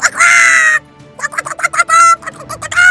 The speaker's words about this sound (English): Then she bumped into her former owner. He didn't recognize her, so she pulled on the chicken's legs. The chicken started squawking.